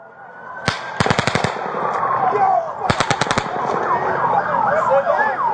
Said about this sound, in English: Hey, get them down, get them down. Hey, you guys, get down. Go that way. Get out of here. There's gunshots coming from over there. Go that way. Go that way.